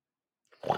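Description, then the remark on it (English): After a moment of silence, a person imitates a growl: a short, rough, low-pitched, gravelly voiced rumble that starts abruptly and is cut off while still going. “But right before we leave, I need to hear your growl one more time.”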